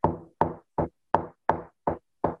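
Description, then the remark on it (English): Seven firm knocks on a dinner table, evenly spaced in a steady rhythm, each a sharp, loud thud that dies away quickly. No voices. “Imagine being at a dinner table, everybody fucking around, and just hearing this.”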